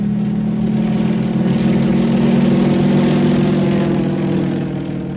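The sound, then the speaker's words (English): A propeller airplane engine drones steadily overhead, a loud continuous low hum with a slight pulsing throb, fading a little at the end. No voices are heard. “In the air.”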